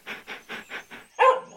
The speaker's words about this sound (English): A dog. A hunter's dog had found me.